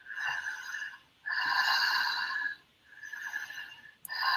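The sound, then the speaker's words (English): Loud open-mouth breathing in a steady connected rhythm, demonstrated as a breathing technique, with about four deep, airy breaths following each other with barely a pause between them. No talking. “And so just open mouth connected breath.”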